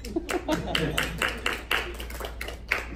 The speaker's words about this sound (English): Clap a round of applause if you know how to clap in more than one language.